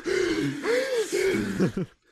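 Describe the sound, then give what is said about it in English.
Exaggerated, deep gasping breaths drawn in a few loud, voiced heaves, ending in a couple of quick short gasps before silence. “Yes, I can finally breathe how I want to.”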